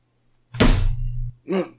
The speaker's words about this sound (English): A thump upon the door.